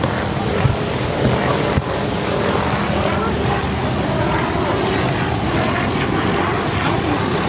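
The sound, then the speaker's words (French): Helicopters and airplanes drone steadily overhead at Niagara Falls, a continuous loud roar that neither fades nor swells, blended with a broad rushing wash of falling water. “Mais il y a un autre bruit qui est assez saisissant, et notamment en fait à mesure que vous vous approchez de l'eau, c'est le ciel, les hélicoptères et les avions.”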